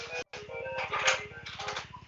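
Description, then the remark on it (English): A phone ringtone plays a bright, melodic electronic tune with shifting high tones over a steady buzzing pulse, briefly cutting out near the start. No one speaks. “oh, this is my phone ringing.”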